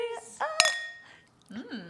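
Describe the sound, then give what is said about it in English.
A single bright clink of wine glasses touching in a toast over a 2020 Predator Zinfandel bought at Costco, its high ringing tone lingering briefly before fading, with soft voices just before and after. “So today we are drinking a Predator Zinfandel. It's a 2020.”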